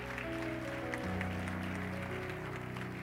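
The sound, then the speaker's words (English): An audience clapping their hands in the morning, in a dense, continuous wash of applause, with steady sustained musical tones humming underneath throughout. “Clap your hands this morning and begin to believe.”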